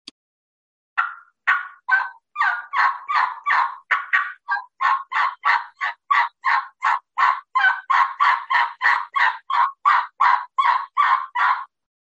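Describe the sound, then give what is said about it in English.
A turkey call sounds a long, steady string of about two dozen loud yelps, run together in a pleading rhythm like an old hen's assembly call, a fall call, with no talking. “It's more of a fall call, maybe, but that is the old hen assembly. Again, it's a series of yelps, and you just string the yelps out into a pleading fashion like this.”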